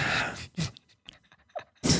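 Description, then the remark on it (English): A voice imitates the upward swinging sword circle special move of Link from the video game Legend of Zelda, with breathy whooshing bursts, a loud rushing burst at the start, a shorter one after, then small clicks and a final forceful whoosh. “My favorite was Link from Legend of Zelda and his was this like upward swinging sword circle and you don't even need to find the sound effect because I can nail it.”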